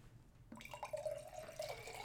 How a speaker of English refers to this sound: ASMR. Thank you. Yeah, excellent ASMR. That was a Brita pitcher pouring into a mason jar.